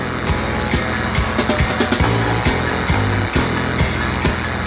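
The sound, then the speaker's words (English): A loud, whirring power drill played through a wah pedal, its pitch sweeping and pulsing in rapid bursts over a dense, driving wall of distorted guitars in a no wave-style rock song. “But that's the sound of the power drill through the wah.”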